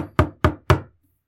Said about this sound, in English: At that moment, you hear a knock on the door.